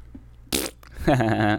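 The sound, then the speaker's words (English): A short fart: a brief, raspy burst of noise, a moment's pause, then a louder, buzzy, tonal rasp lasting about half a second. No one speaks. “I farted.”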